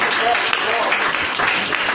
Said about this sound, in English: Oh yeah, if I clap and do it better.